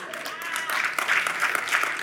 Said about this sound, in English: See, I know it's golf claps.